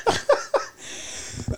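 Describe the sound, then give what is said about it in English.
Three quick, harsh coughs in a rapid burst, followed by a breathy, hissy pause and a few faint low thumps. “Oh, COVID. Rona cough.”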